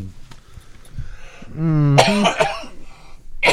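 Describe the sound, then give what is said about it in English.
A man coughs, a voiced rasp building into a harsh, throaty burst, then a quieter follow-up cough and another short one at the very end. No one speaks. “I love how he coughs your way every time he coughs.”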